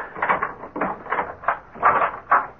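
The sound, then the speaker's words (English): Keys rattle in a lock in a quick series of metallic clicks and clunks, then a door is pulled open. No one speaks. “Open the door, Boggs. You have the keys?”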